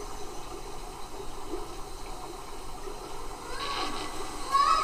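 nature, flowing river water

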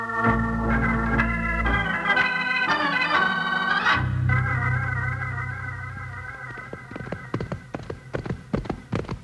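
animal, horses galloping hoofbeats

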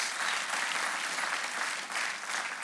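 crowd, audience round of applause

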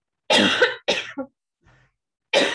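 human body sound, coughing fit

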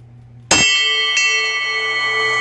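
signal or alarm, alarm ringing

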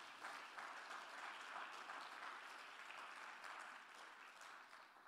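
crowd, audience clapping hands

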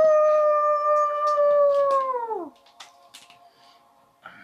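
sound effect, wolf howl

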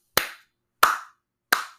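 crowd, hand clapping

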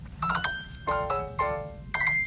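signal or alarm, mobile phone ringing

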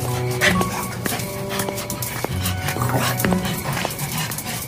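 animal, dog barking

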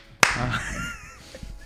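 human body sound, hand clap

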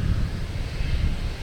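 nature, wind blowing outdoors

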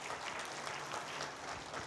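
crowd, audience clapping loudly

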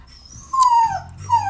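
animal, puppy whimpering

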